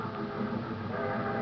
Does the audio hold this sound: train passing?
yes